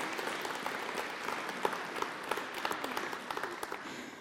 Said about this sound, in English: You can go and sit down now. Round of applause for Willow.